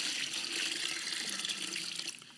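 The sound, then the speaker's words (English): A steady stream of water pours into a bucket, filling it, a continuous bright splashing rush that fades slightly near the end. No one speaks. “So, you know, you just get the bucket out and you just fill it up.”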